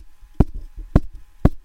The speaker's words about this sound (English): Oh, that's every Giants fan collectively banging their head against the wall.